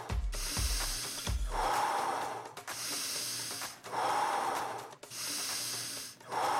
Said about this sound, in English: Fully breathing in, slowly exhaling out, holding the exhale.